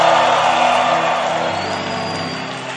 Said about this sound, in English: Give the Lord a shout and a clap offering for that one.